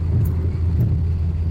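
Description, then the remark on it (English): Steady low road rumble inside a moving car, a constant dense drone with no breaks, loud, with no talking. “This car is moving.”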